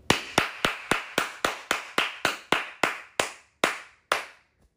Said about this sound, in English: Got a buyer. Let's clap it up.